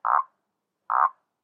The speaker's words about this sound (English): Toads! See, I knew it. They do exist. I can pick them up and everything.